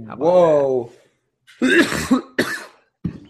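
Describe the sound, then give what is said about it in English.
A drawn-out voiced exclamation, then a few muffled coughs in quick succession, coughed into a hand, with the last one shorter and trailing off. “You coughed into your hand?”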